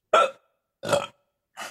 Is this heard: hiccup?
yes